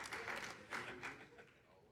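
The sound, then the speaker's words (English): An audience claps in a brief, scattered burst of applause that swells a few times and then tapers off toward the end, moderately loud with no talking over it. “I hope you're clapping for Jesus.”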